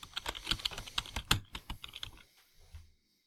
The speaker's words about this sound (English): That's it. That's enough typing.